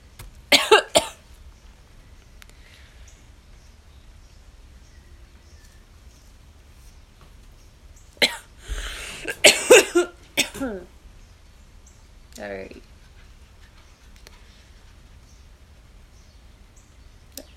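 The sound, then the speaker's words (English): A person coughs after smoking a blunt while it is raining: a couple of harsh bursts near the start, then a longer, hacking coughing fit around the middle, followed by a brief throat-clearing rasp, with quiet pauses between. “Yeah, like, yeah, I'm coughing a lot, but it's because my lungs are shit from smoking too much.”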